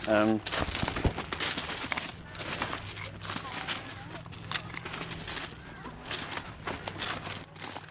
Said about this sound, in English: So this is the gentle sound of litter pickers crunching across